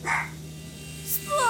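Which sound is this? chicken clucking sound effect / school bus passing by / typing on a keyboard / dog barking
dog barking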